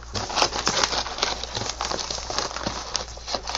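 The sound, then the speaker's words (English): Continuous crinkling and ripping of stiff packaging, with a rapid series of sharp crackles and snaps as a tightly sealed package is torn open, no voices. “It looks like it requires scissors. This one is very tightly sealed.”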